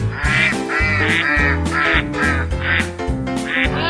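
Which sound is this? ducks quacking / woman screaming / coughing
ducks quacking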